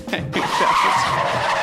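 A car's tires screech in a sustained skid as the brakes lock, a loud squeal holding steady for over a second with a rough noisy edge.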